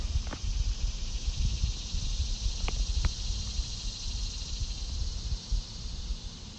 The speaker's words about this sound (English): Monday, August 31st, 2020. Standing outside, listening to the cicadas.